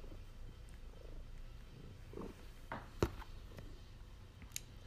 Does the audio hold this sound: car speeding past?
no